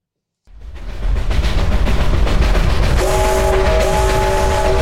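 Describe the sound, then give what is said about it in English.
A train rumbles in loudly after a brief silence, its heavy rolling noise steady throughout, then a sustained multi-tone train horn blares over it for the last couple of seconds. “Welcome to the Gains Train Podcast. Choo choo, motherfucker.”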